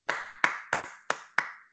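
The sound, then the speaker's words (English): Five sharp hand claps in a steady, unhurried rhythm, each crisp and fairly loud with a brief ringing tail, and no voices alongside them. “Clap it up.”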